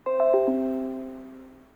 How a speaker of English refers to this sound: The clock chimes. It's only 7 a.m.